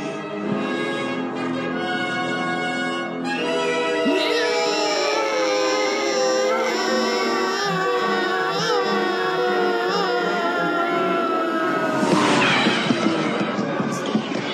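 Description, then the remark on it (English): A man's voice lets out a long, loud, sustained scream imitating Luke's anguished cry from Star Wars, wavering in pitch and rising into a harsher, strained burst near the end. “So let's listen to some listeners that sent in their screams, their Luke screams.”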